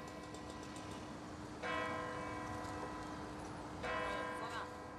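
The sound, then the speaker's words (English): Newly returned replacement church bells ring out in two slow strokes about two seconds apart, each a bright, resonant clang that lingers and fades over a steady background hiss and low hum. “They don't sound the same, mind you, but it's nice to hear them again ringing out, but it's a totally different sound.”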